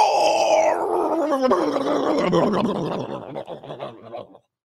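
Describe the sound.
A man's voice lets out a loud, drawn-out growling roar in imitation of a big animal, tapering off into rough, breathy grunts before falling silent.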